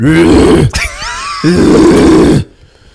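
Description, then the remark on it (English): A man's voice imitates a male koala's mating bellow: two long, loud, rasping low grunts with a snoring, throbbing texture, separated by a short wheezy, higher-pitched intake of breath. “Dude, a koala mating call is the scariest thing.”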